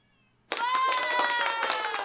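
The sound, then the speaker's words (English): A cat lets out a loud, drawn-out yowl, starting abruptly after a brief near-silence and holding steady for over a second with no talking. “I need this cat right now.”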